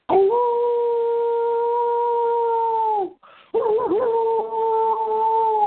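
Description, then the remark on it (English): A man howls like a wolf, holding one long, steady howl for about three seconds, then after a brief pause letting out a second wavering howl. Loud, with no talking. “You see why I told him to howl, right?”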